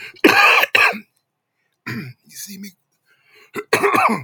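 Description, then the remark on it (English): A person coughs several times in short, harsh bursts, with brief pauses between the coughs and a throaty clearing sound mixed in. “You see me coughing.”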